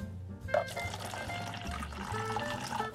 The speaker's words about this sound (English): But it's good to see you join in for some tea. Here, let me pour you a cup.